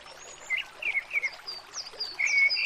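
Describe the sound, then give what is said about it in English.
A steady wash of flowing stream water in the woods, from the 'Walk Through the Woods' Alexa skill, with a soft, continuous rush, while several high, thin bird chirps and whistles flicker over the top. No one speaks. “By a stream at the moment.”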